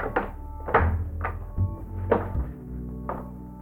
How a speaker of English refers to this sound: The door is open.